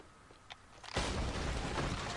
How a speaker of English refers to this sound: Right, there's a massive explosion from on top of us.